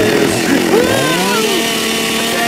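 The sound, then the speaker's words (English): A loud chainsaw engine, pull-started for yard work, revs up and down, its pitch swooping through several rising and falling surges, with a steady buzzing drone underneath throughout. “If I can get this thing on. Pull harder.”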